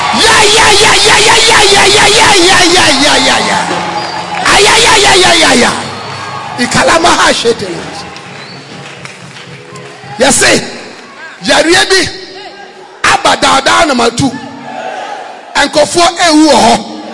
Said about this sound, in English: clap your hands and give the Lord a shout.